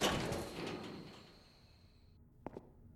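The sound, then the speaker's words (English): The sliding front door of the AVR Medical center opens with a loud, airy whoosh and a faint high whine that trails off, then two quick clunks as it settles. No voices. “McDonald followed the coordinates on his Pip-Boy and found himself in the front door of the medical center.”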